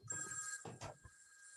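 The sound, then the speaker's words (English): A telephone rings for an incoming call with a bright, steady electronic tone, fairly loud, briefly overlapped by bursts of noisy rustling or movement before the ring trails on alone. “We're getting another phone call.”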